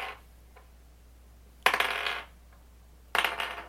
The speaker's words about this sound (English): I get to play with my shiny new Renfair dice.